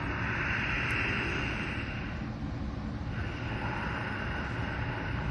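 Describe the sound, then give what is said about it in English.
A loud, steady rushing hiss of ujjayi pranayama, the ocean or whisper breath, drawn through the back of the throat by constricting the epiglottis, continuous for several seconds with a slight easing midway, and no talking. “And maybe bringing some of that whisper breath, that ocean breath, that whisper to the back of your throat by constricting the epiglottis, ujjayi pranayama.”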